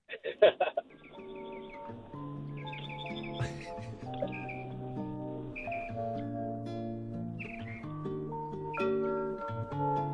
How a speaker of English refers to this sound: Was that the, is that the one I'm thinking of that starts with birds? Oh man, I haven't heard that song in forever.